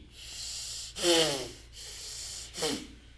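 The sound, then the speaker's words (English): Two forceful, hissing breaths from the belly during a guided breathing exercise, the first longer and the second shorter, rising out of a steady low background hiss with no talking. “So look inside the belly button and start breathing long in the hissing breath from the belly.”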